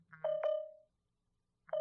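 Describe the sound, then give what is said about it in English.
A phone's moisture warning alert sounds, for moisture in the charger: a quick pair of electronic beeps ending in a ringing tone that fades, then starts again after a brief pause. Clear, with no talking. “There's moisture in the charger?”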